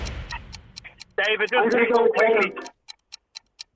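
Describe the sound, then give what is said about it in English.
A game show's 20-second countdown clock ticks in a steady, regular rhythm of sharp clicks, about three per second, while two contestants must reach a decision. It ticks beneath a burst of indistinct voices at first, then carries on alone once the talking stops. “20 seconds on the clock.”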